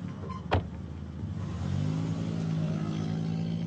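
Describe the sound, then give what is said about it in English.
A sharp thump like a car door shutting, then an engine rises into a steady, building hum as a car carrying two women and a small baby speeds away from an apartment complex. No one speaks. “Then both of them entered the car and sped away.”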